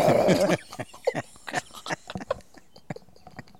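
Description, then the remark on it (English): A voice imitates puking: a loud, gurgling retch bursts out first, followed by a string of short, wet gagging and spluttering sounds that taper off. “It's a really good puking noise.”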